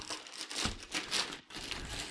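Wrapping paper is torn off an Xboxmas gift containing the Duck Dynasty Redneck Wisdom Family Party Game, a continuous run of crinkling rips and rustles lasting a couple of seconds, with no one speaking.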